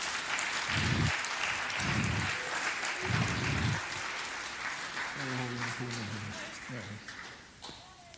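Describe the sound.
A church audience applauds steadily to welcome their pastor to the front during a Swedish service, a dense crackle of many hands clapping at once, with a few low murmured voices and bits of talk mixed in underneath.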